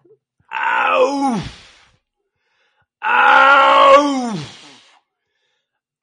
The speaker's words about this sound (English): So again, that is an actual lion. They do this like guttural. They push the sound out.